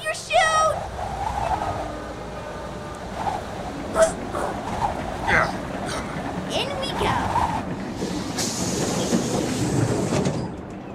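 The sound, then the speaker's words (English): A train rumbles steadily along the rails, with a broad low roar and scattered metallic clanks and squeals rising over it, fairly loud throughout, with faint indistinct voices underneath. “We only have 2 minutes to catch the train before it enters the tunnel.”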